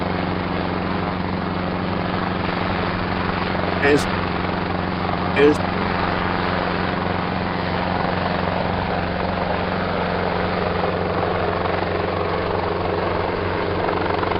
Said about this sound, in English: Let's have a look at the UFO helicopter.